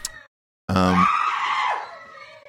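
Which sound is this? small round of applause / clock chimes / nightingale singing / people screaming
people screaming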